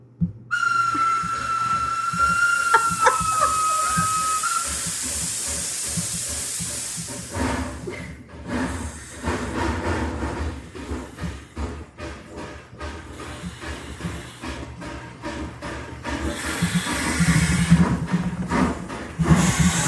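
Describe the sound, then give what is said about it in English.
A steam train whistle blows near the start, then the locomotive chugs and hisses steadily past, its rumbling, clattering wheels growing louder before continuing on. “And it moves across my headphones. It went right to left and or left to right and every.”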